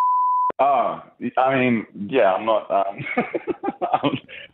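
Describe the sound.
A single steady censor bleep lasting about half a second cuts in loudly at the start, covering the name of a building, then a voice continues speaking right after it.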